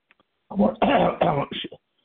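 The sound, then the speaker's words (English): A loud burst of throat clearing and coughing, several rough, harsh pulses over about a second, with no talking. “We're all coughing here.”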